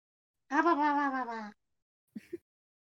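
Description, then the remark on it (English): A cat named Sweetie lets out one long, drawn-out meow, then a short chirping trill follows after a brief pause, with nothing else around it. “That was very close to a Yoshi sound.”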